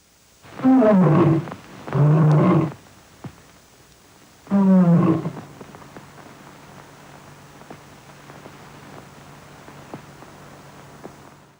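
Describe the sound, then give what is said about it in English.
The first MGM studio logo lion to roar, a female, roars three times in loud, throaty bursts that are short and evenly spaced. A quiet stretch with faint hiss and light crackle follows, like an old film recording. “the first one that roared was called Jackie. And she sounded like this.”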